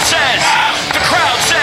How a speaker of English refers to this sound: The crowd says, you're out. So Pakistan lose their first wicket after 7.5 overs, and the score is 41 for 1.